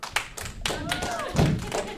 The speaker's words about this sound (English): clapping the loudest. Yeah, we thought maybe that was the case.